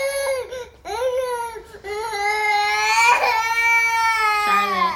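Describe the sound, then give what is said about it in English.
A girl of just over two cries loudly and continuously in long, wavering wails with a few short breaks for breath, the pitch rising and falling throughout, with no other sounds around it. “So that's my daughter. She's lovely. And she's just over two,”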